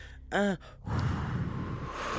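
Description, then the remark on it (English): A brief voiced, sigh-like tone, then a steady rush of air blown through the lips, imitating a gust of wind and lasting over a second. “A sudden wisp of wind.”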